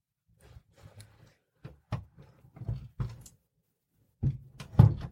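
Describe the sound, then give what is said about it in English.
Irregular thuds, knocks and rattling clunks of a door being tried and pushed, in uneven bursts with short pauses between them and no talking. “I've seen you get through that door.”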